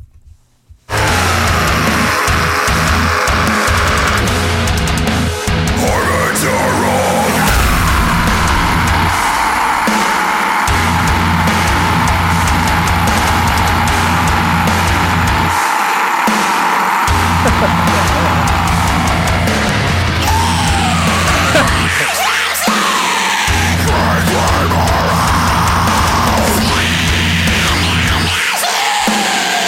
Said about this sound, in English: So it's symphonic deathcore, and pretty talented. A lot of tasty riffs, a lot of fast technical drums, a lot of heavy hitting breakdowns. Ooh, so let's listen to this insanely long scream over a gnarly breakdown.